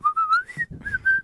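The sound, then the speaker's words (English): A person whistles an intro tune, a short melodic phrase of a few sustained notes rising and falling over about a second, clear, with some low background rumble. “you want to like hum it or whistle it?”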